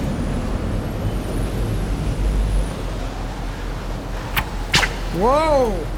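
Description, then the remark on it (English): Two sharp, whip-like cracks in quick succession as a taut rope at the bow of a boat is cut with a pocket knife and snaps, loud, over a steady low engine rumble, followed by a brief rising-and-falling tonal sound. “The rope's wicked tight. I think I can snap it with my pocket knife, but it might whip around.”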